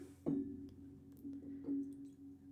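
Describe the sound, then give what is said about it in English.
Bearcat Bourbon, infused with aromatic bitters and espresso, glugs from a bottle into a glass, a few soft gurgling bursts over a low steady tone, fairly quiet with no talking. “All right, I'm going to pour the next one for myself.”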